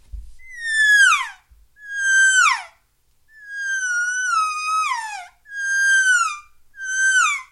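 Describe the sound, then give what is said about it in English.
Five loud, nasal elk calf calls blown on an Elk Reel game call, each a harmonic-rich whine that slides downward in pitch. The middle call is the longest, with brief pauses between them and no talking. “Let me hear you get a kind of loud and nasally with that call.”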